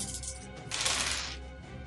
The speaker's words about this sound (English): All right, you give me the number on the die, and I'll do the math. Dice. Many, many, many dice.